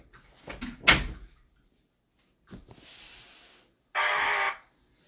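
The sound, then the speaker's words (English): An unlocked door is opened: a loud clunk, then a few latch clicks and a soft rushing sound, ending in a short, harsh burst of noise. No one speaks. “Yeah, you said open the door before I broke it, and I went...”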